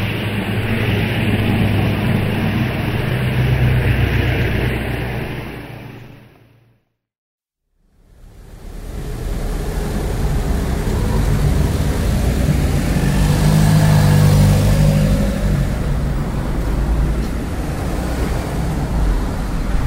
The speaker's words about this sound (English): This record is being taken in Beecham Place, a side street off Brampton Road, at midday on Thursday, the 20th of September, 1928. Three taxis have just gone by. There is now a lull. Two private cars are just coming up.